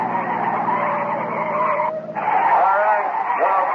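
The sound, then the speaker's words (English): Loud, steady roar of car engines with screeching, skidding tires as a car is chased by two police cars, broken by a brief dip in the noise before the racing sound surges back. “Cut the engine and come out with your hands over your head.”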